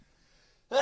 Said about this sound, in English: Bless you. I'm allergic to Eagles talk.